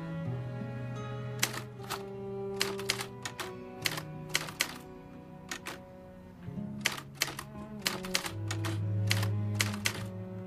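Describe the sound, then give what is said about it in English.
Typewriter keys clack in quick, uneven bursts of sharp strikes, fairly loud, over a steady, low musical background with no one speaking. “Sometimes a simple rhythm of typing gets us from page 1 to page 2.”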